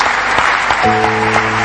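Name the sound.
audience clapping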